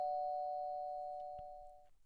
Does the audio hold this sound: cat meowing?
no